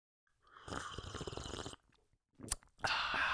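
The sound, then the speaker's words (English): A loud slurping sip of tea, followed by a brief click and a second shorter noisy intake, with no talking. “Just a good old breath and a sip of tea.”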